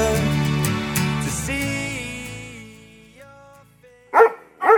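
Music with sustained tones winds down and fades, then a dog barks twice, close and loud, the two sharp barks about half a second apart.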